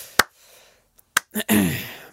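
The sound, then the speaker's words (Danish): A slow, sparse, ironic golf clap: two crisp claps about a second apart with quiet between them, followed by a voice starting to speak. “Sådan en slags ironisk golfklap, ikke?”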